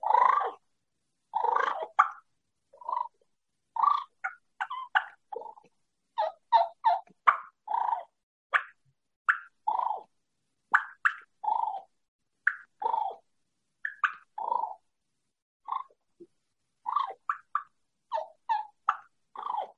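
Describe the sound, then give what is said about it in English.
Soft turkey clucks and rolling purrs made on a mouth call held in the mouth and worked with the end of the tongue, a steady run of short notes in irregular bursts with brief pauses, no talking. “But let's go into cluck and purr and do a little bit for him.”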